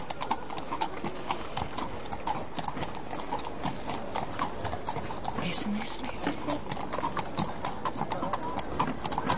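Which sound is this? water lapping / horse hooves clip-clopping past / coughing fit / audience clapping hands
horse hooves clip-clopping past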